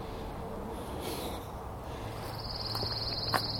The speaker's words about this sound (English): See, in these pine forests, all they have is angry birds. They don't sound happy. They sound like mean.